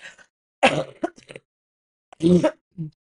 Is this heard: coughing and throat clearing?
yes